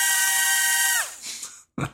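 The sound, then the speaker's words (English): A tiny palm-sized camera drone flown around inside a house; its propellers let out a shrill, steady high-pitched whine that sweeps downward as they spin down, followed by a brief clatter and a short burst of noise. “That sounds like a dentist drill.”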